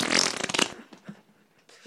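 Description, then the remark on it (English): A loud, sputtering fart sound effect, played with reverb on The Todd Glass Show, bursts out for about half a second, then fades into a washy reverberant tail with faint murmurs trailing off. “I felt actual tension waiting for that fucking fart sound.”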